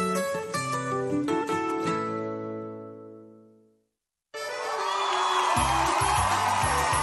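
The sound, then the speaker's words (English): A musical chord rings out and fades to silence, then a loud, dense stadium crowd roars and cheers for the last few seconds, sustained. “Hear the roar of the crowd, or is that the roar of your stomach?”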